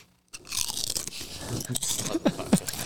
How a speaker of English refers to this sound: So you want to cheers a fucking chip and we're going to chew in the fucking microphone like fucking Momos.